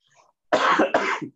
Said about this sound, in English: I've been coughing a lot. But other than that, I'm doing okay.